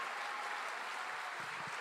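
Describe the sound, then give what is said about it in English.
Sustained audience applause for military veterans who fought for the country, a dense, steady wash of many hands clapping at once with no pause for the full couple of seconds. “Can you guys give them a round of applause?”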